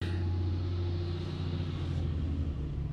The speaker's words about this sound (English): Driving a truck. He's driving a big old truck. Driving a big old truck.